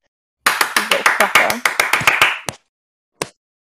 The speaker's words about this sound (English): It's just, every time I clap, you must edit. Yeah, when I clap, edit out, dip.